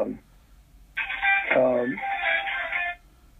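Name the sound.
mobile phone ringtone playing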